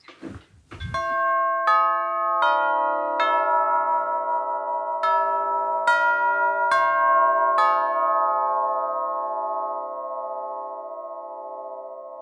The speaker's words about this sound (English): So that is a long bell, eight-note melody, Westminster Peal, played on a vintage long bell door chime. The long chime is exactly as you would imagine, long. You can picture it as sort of a flat wind chime up against the wall.